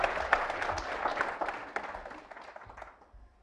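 A room full of people applauds, a dense patter of many hands clapping at once that holds steady and then thins out and fades away over a few seconds.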